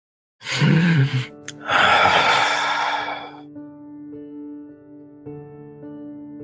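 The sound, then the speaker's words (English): Two loud, deep, uneven inhaling breaths drawn in by a person, one short and one longer, off pace of their natural breathing, then a soft sustained musical drone carries on alone. “I take a couple of, like, weird deep breaths, like inhaling, that seems to be off pace of my natural breathing that you saw me go through earlier,”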